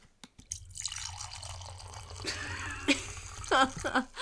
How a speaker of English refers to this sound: First of all, we were drinking white wine tonight. When you hike everything in, you have a limited selection. And I'm very happy with this wine. It is a boxed wine. I'm going to pour myself more right now.